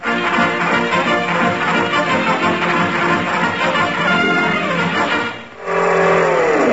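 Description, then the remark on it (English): A loud car engine roars steadily, briefly drops off, then revs up again with a rising whine as the vehicle pulls away. No one speaks. “Well, then I'll chase him. Give me your car keys”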